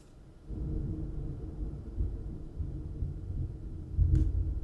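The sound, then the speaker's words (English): A long, low rolling rumble of thunder builds after a quiet start and carries on steadily, swelling into a brief louder crack near the end. No one speaks. “I hear the thunder. They're really long rolling thunders.”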